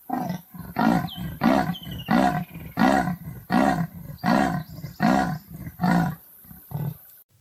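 A marsupial lion (Thylacoleo carnifex) roar: around ten loud, deep, rasping pulses in a steady rhythm, each swelling and fading like a drawn-out grunt, with no voices.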